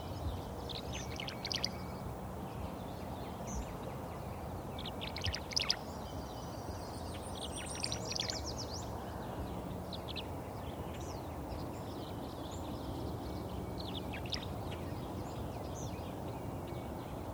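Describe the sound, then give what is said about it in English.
Tree swallows call in short bursts of high, liquid twittering chirps, clustered in the first half and thinning out later, over a steady wash of rushing background noise. “As I'm somewhat limited in my range of travel this year, I find myself starting to appreciate the behavior of more familiar species, like these tree swallows.”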